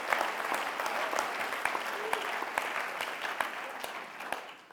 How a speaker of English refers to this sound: It is a miracle of kindness. Let's just applaud God's goodness one more time.